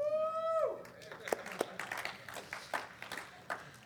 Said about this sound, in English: Someone else is clapping.